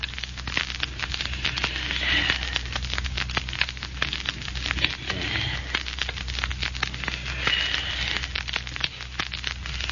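The diamond of a ring scratching across a glass window pane: a steady, gritty crackle of dense clicks with a faint high squeal, running unbroken for about ten seconds over a low hum, with no voices.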